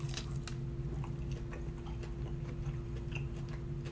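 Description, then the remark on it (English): Crunchy biting and chewing of crispy chicken tenders with sweet chili sauce, with repeated crackly crunches over a steady low hum, no talking. “So I'm going in here. Crispy. Going in, folks. Crispy. With the crispy tenders.”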